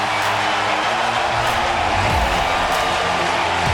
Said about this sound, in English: Crowd on its feet. Center field, Corey Patterson back. He's there. Inning over.